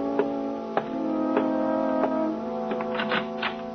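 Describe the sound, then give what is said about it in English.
Slow, steady ticks of a kitchen clock repeat roughly every half second, distinct, layered over a low, continuous droning hum. No voices are heard. “Glance at the kitchen clock.”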